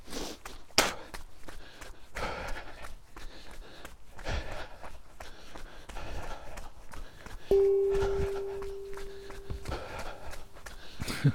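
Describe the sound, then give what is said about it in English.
A person out running: steady footsteps thud in a quick, even rhythm, accompanied by heavy, wheezy panting breaths; a brief sustained tone sounds partway through. “It's really good for you, this running”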